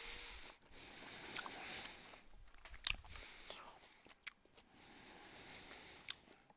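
Chewing and crunching of a hard vitamin C tablet, with irregular wet bites and soft mouth noises continuing for several seconds, no talking.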